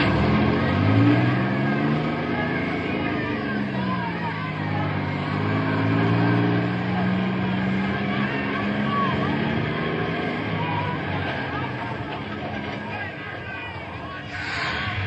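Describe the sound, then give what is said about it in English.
A large bus filled with boys rumbles and revs as it pulls away, its low engine drone rising and shifting in pitch, with a crowd of voices chattering in the background throughout. “This bus is filled. Stand here now until it pulls away and the other one pulls up the load.”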